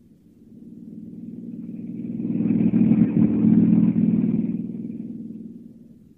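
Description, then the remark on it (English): A hired car driven by Clark Kent on the dusty road to San Miguel, 50 miles away: the engine rumbles steadily, growing louder as the vehicle approaches, peaking midway, then fading as it drives on. No voices, just the low hum of the motor and road. “Hiring a car, Clark Kent heads out at once on the dusty road to San Miguel, 50 miles away.”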